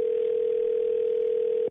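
A steady, unbroken telephone dial tone, heard while a radio show on New Country 103.1 places a call to a listener's husband, hums at constant pitch and loudness for nearly two seconds, then cuts off abruptly; no voices are heard.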